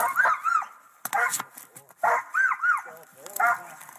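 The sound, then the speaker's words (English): A Belgian Malinois police dog barks and lets out shrill, screeching yelps in quick clusters of two or three, loud, with brief pauses between bursts. “Someone else says, my dogs are wondering what that screeching thing is. It's a Malinois.”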